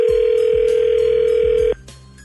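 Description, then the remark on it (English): A steady, loud telephone dial tone hums continuously for almost two seconds, then cuts off abruptly, with a few soft low thumps underneath. No one speaks. “We'll make some phone calls here when we come back.”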